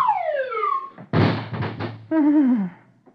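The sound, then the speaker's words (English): Dithers' door swings open with a descending, creaky sliding tone, followed by a loud, heavy thud lasting about a second, then a wavering downward whistle-like slide as Dagwood sails out. No one speaks. “Dithers' door opens, and out sails Dagwood.”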